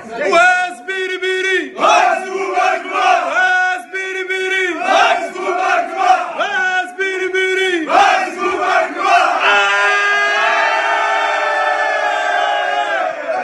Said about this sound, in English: and then afterwards we were in the back room, and they came in and taught us something in Arabic to scream at the top of our voices, which is here.